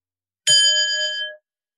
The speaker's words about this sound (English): I'm going to ring a bell, but I'd like you to rest in the state as much as you can.